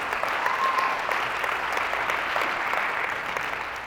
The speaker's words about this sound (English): So just let's give them a round of applause for just what they do.